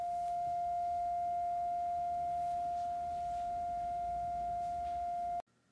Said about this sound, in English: A bright light, a strong sound. Blinded by the light, everyone was screaming. Their ears were buzzing.